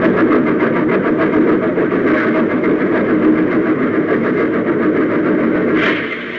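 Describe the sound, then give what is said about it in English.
A loud, continuous rumbling roar of a train rushing through a tunnel, dense and steady with rhythmic clatter, swelling briefly near the end before easing off slightly. “That was the first tunnel.”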